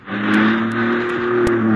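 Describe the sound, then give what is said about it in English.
A car engine runs steadily at a low, even idle with a strong humming drone, continuous, with faint clicks over it as the car, stopped at a red light, slowly rolls back toward the car behind while the driver eases off the brake pedal. “Carefully, you ease your foot off the brake pedal. Let the car roll back toward the one in the rear.”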